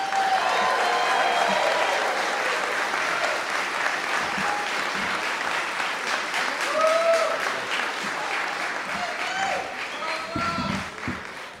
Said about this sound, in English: She puts on this event. She's organized this event last year and this year. So please give a big round of applause to the queen of the quills,